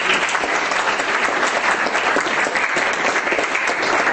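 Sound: audience clapping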